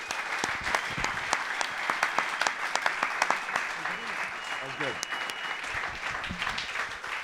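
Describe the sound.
A crowd claps steadily, dense applause with sharp individual claps standing out, sustained throughout at moderate volume, with faint voices murmuring underneath.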